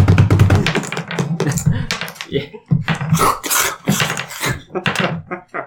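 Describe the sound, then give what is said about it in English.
A rapid clatter of small hard objects, like dice rolling and tumbling across a table, with dense overlapping clicks and taps that run for several seconds, fairly loud. “You gotta drop a bunch of them. … keeps yelling. Oh, sorry. I need a dice tower.”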